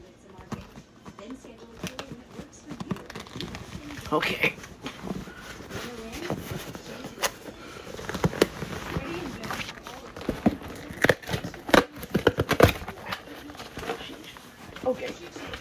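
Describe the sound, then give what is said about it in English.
Crinkling and rustling of packaging, including popping paper, as a box holding a small stereo microphone is opened, with scattered sharp crackles and taps running throughout, some louder bursts near the end. “So without further ado, let's unbox this baby.”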